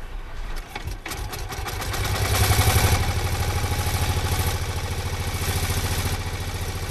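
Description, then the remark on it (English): The engine of a 1901 de Dion Bouton car, primed with petrol, sputters into life as it sets off on the first Gordon Bennett commemoration rally, then settles into a rapid, steady putter with a clattering mechanical rattle, swelling slightly louder before holding an even, fast rhythm. “Ozzie Bennett, setting off on his 1901 de Dion Bouton.”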